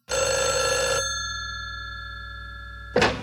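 A telephone rings in one loud burst lasting about a second, its tone lingering and fading, followed near the end by a sharp click like a handset being picked up, as the opening of a phone skit on an album.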